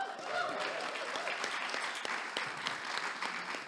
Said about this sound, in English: We're not clapping to make them feel good. We're clapping to just honour their time as well. So it's really good to do that.